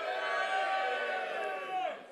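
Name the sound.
audience cheering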